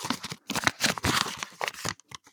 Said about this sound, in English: This is fascinating to listen to, I'm sure. Now I'm opening paper.